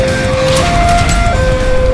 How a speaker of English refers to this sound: They blast out the door where a police car is open, and they vault right into the back seat, and the car peels off.